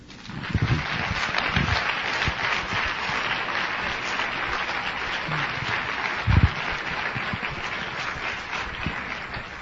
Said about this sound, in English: I'm glad you didn't clap too much longer because I have about a minute and a half to wrap everything up here.